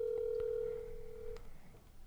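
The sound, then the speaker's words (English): A phone line rings out with a single steady electronic ringback tone lasting over a second, then stops with no answer, leaving faint background noise and a few soft clicks. “Or don't answer. That's cool too.”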